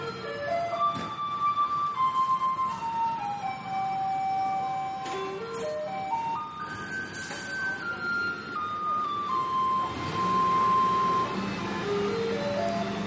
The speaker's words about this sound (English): So we're hearing in the distance, it's not an ice cream truck, but... No, it's definitely not an ice cream truck. It's in fact the garbage truck. It plays a little melody.